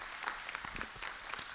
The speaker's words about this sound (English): So you give them a big round of applause for me.